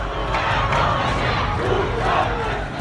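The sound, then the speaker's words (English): A large crowd of Iranians protesting in the streets against the government's cover-up of a downed passenger plane shouts and chants together in a dense, continuous roar of many voices, with rising and falling surges of yelling throughout. “Iranians filled the streets to protest against the cover-up, their rage compounded by the cratering economy and a leadership that seems completely out of touch.”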